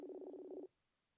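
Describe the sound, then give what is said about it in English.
A single electronic ringing tone from an outgoing Facebook call sounds for about half a second with a slight warble, then cuts off into near silence. No one speaks. “No, I'm calling him on Facebook.”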